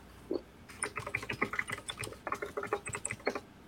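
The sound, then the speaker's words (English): Rapid, crisp clacking keystrokes from a 60% mechanical keyboard in a quick uneven rhythm of many presses over a few seconds, with no voices. “Nice mechanical keyboard.”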